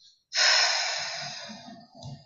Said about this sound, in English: What am I hearing? Snoring. I hear snoring.